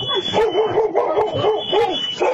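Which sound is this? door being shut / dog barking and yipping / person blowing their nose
dog barking and yipping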